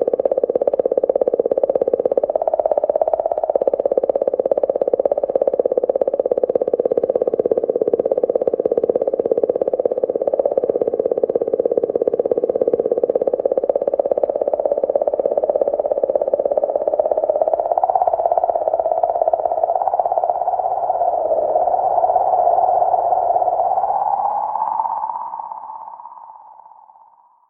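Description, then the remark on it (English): Sonified comet plasma, a continuous warbling, croak-like drone with buzzy overtones, holding steady mid-pitch for about 25 seconds, then rising slightly before fading out. No one speaks. “I haven't heard that, but for listeners, here is the sound of either an amorous toad or the plasma around a comet.”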